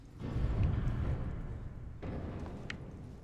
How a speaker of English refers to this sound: That was a big sound. Why was there a big sound? Oh, there's a ship flying by that I can see outside the windows. It's my ship.